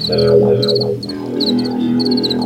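Crickets chirp in quick, repeated bursts of high pulses, steady and fairly loud, layered over a lower droning chorus of croaking calls, with no voices.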